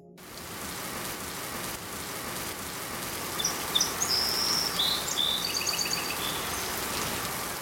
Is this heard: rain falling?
yes